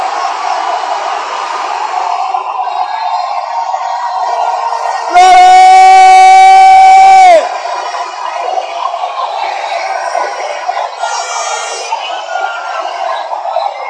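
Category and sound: crowd, audience shouting and cheering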